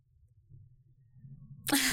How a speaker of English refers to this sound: I was trying to not sneeze. I did it anyways.